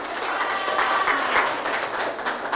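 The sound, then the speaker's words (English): An audience applauds two people steadily, a dense wash of many hands clapping at a fairly constant moderate loudness with no clear individual beats, lasting a couple of seconds without speech. “Let's you give get a hat. Applause.”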